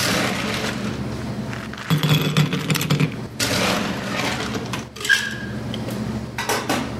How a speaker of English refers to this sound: I'm still going to sit here and watch and listen to the sounds of cocktail making. I am going to chill a coupe glass for this just to make it extra special.